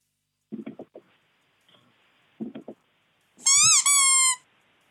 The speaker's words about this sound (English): No, it's just a little squeak. Now, you said your wife, when she sits down as well, sometimes that squeak, you can hear the same squeak? Yeah, it squeaks when we both sit on it.